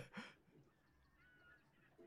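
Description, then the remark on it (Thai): Birds calling, sampled into a lo-fi music track: one loud, harsh, honk-like cry bursts out at the start, followed by faint, thin, wavering whistled notes over a quiet background. “เสียงนกก็มา แซมไงแซมมา”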